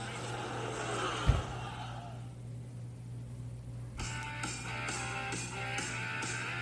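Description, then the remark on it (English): Race car engines at an Xfinity race in Kansas drone steadily in a loud, continuous roar with a low hum underneath, broken by a brief thump early on and a shift in the noise partway through. “The engines are fired up.”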